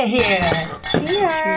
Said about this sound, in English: Can we just do a quick cheers? Oh, guys, can we all raise our crispy beers?